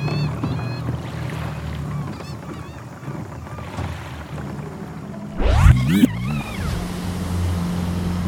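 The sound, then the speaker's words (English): A fishing boat's engine drones steadily over open water as it cruises along a weed line, with wind and splashing around it; near the middle a louder rising surge briefly swells before the steady motor hum settles back in. “We've been cruising the weed line for hours and have come up with shit.”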